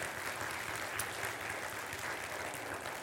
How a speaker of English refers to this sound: Can I hear an amen? Amen. Come on, church, give God a hand clap.